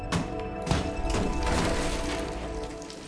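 A wall of a flat is smashed through, knocking a hole in it, with a few heavy crunching blows, followed by a steady rush of crumbling debris and rattling rubble that slowly fades. No one speaks.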